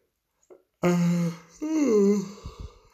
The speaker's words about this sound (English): Yawn. Although I think that yawn is warranted, to be honest.